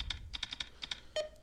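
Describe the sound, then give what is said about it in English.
Rapid typing on a computer keyboard using number keys, about eight crisp clicking keystrokes in uneven bursts, moderately quiet, ending with a slightly heavier key press and a faint brief tone. “And he's typing. And he's using all number keys.”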